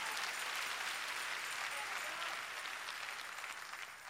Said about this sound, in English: Clap your hands and give praise to the Lord.